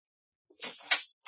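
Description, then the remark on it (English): A door is opened with a short click, followed by a scraping creak and a brief second scrape, all quick with no voices. “Open the door for me.”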